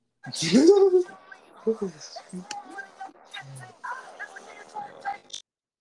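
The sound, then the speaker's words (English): The speaker's dog barks loudly, then lets out a string of shorter, higher yips over several seconds, with some voice activity mixed in around the barking. “Nah, you get to get my dog.”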